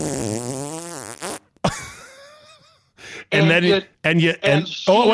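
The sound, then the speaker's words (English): A long, buzzing fart noise made with the voice, wavering and dropping in pitch for over a second, followed by a short squeak and several loud, choppy vocal bursts. “And then you let out a 5-second long audible fart.”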